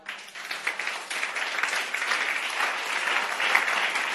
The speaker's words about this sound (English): So I can even clap our hands for the word wild.